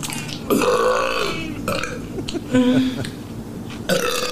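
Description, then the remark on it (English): A woman lets out several loud, drawn-out burps in quick succession while eating a pickle, with brief pauses between them and faint mouth noises as she eats. “She's eating a pickle while she burps here.”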